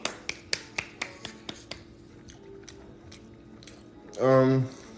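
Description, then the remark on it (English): A quick run of sharp claps for a man, loud at first and then softer and sparser over about three seconds, followed by a short burst of a voice. “Why just clapped at him for that?”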